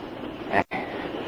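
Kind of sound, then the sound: vehicle, moving train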